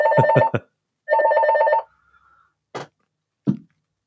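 A loud electronic buzzer rings in three short, rapid pulses, then sounds once in a longer sustained burst, followed by a faint lingering tone and two sharp clunks. No one speaks.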